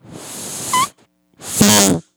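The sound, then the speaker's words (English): Two blown, raspy fart noises from a novelty whoopee-cushion whistle blown by mouth, each under a second long with a short pause between, the second one buzzier and wavering in pitch before cutting off. “It's really just like a flap of whoopee cushion.”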